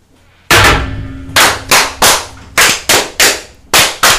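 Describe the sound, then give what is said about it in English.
A ragged volley of about nine loud blasts from a large cannon, each a sharp booming crack with a brief rumbling tail, fired in irregular succession on a command to fire, with no voices. “Quite a large cannon you have there.”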